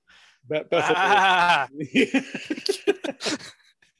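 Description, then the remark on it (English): A loud, drawn-out, quavering bleat from a neighborhood goat rings out, followed by a burst of quick, choppy vocal sounds and chuckling. “The neighborhood goats.”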